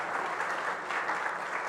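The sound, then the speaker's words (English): A steady wash of crowd applause given as a hand clap of thanks, many hands clapping together in a dense, even roar with no distinct individual claps or voices. “A hand clap of thanks.”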